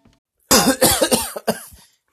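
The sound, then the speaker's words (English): A burst of harsh, loud coughing, several rapid hacking coughs in a row followed by a couple of weaker ones, after someone choked on a sip of coffee; no talking. “Done in by a sip of coffee.”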